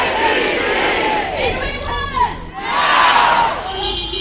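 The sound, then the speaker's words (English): A loud protest crowd of hundreds of activists on Parliament's forecourt chants and shouts in a dense, continuous roar of many voices, with steady tones of honking horns rising through the din for the whole stretch. “The chants and honking horns travelled through Parliament's walls inside to where National's caucus was meeting.”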